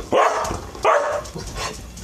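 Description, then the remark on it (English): A dog, one of the speaker's pet dogs, barks twice, sharp, then follows with a couple of softer, shorter yips. No one is speaking. “But it's good to have them around, my dogs, because I'd be lonely without them.”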